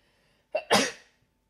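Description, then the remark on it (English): A single sharp sneeze: a quick catch of breath followed by a loud, breathy burst that fades out within half a second, surrounded by quiet. “Bless you. Thanks.”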